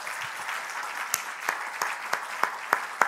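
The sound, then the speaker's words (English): A church audience claps their hands unto the Lord in a steady wash of applause, with a few sharper, louder claps popping out every half second or so. “If you're ready to receive the word, clap your hands unto the Lord.”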